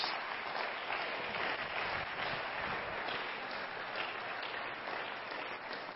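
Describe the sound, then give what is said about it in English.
An audience claps its hands for all the mothers in sustained, dense applause, a steady wash of many overlapping claps that holds at an even, fairly loud level for the whole six seconds without voices. “Why don't we give all the mothers a hand clap today?”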